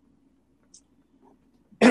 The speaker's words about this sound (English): I think hold on. What a time to have to cough.